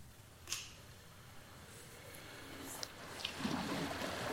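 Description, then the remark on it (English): Quiet outdoor ambience beside the flowing Jordan River in Israel: a steady, soft wash of moving water with a few brief splashy clicks scattered through it, and no one speaking. “reading by the Jordan River, right?”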